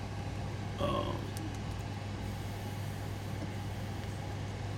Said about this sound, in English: I got my dump truck, and I'm with the talking about the damn dog and what I ate.